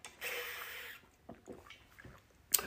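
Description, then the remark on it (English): A quiet slurp as a person takes a sip of water, followed by a few soft gulping swallows and a brief sharp click, like a cup being set down, with no talking. “Let me take a sip of water here because I'm going to get deep into this one.”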